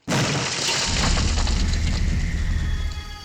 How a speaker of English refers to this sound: all of a sudden you hear a loud, like, explosion? Like, not really an explosion, that's the wrong word. Just the sound of something, some force going through a wall